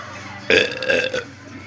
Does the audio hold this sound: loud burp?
yes